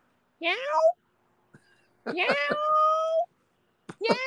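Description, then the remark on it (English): A person imitates a kitten's meow three times: a short high mew, a long drawn-out wail, then a third cut off at the end. Each is clear with brief pauses between. “Meow, meow, meow, and I'm like, what is that? You do that really well.”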